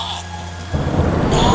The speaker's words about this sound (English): Oh, great! More rain!